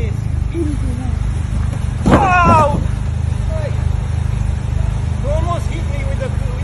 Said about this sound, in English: A video has emerged of a car being driven into a cyclist following an argument in Tunbridge Wells.